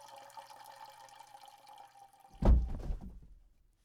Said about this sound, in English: Today, we're going to be adding some nice whole milk to complement the Cocoa Puffs, which our test subject is now enjoying.